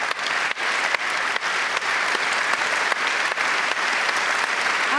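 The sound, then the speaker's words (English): Steady, sustained applause from a large audience at an award speech by Sarina Wiegman, who dedicated her award to Spain's World Cup winning team: a dense wash of many hands clapping at a constant loud level for the full stretch, with no voices standing out. “This applause afterwards, but this team deserves to be celebrated and deserves to be listened to, and I'm going to give them again a big applause, and I hope you will join me.”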